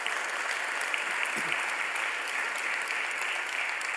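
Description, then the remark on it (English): An audience applauding steadily as a great big hand clap for the Lord, a dense, even wash of many hands clapping at once that holds at a constant, fairly loud level for the full few seconds with no voices standing out. “Many people begin to, let's give the Lord a great big hand clap right now.”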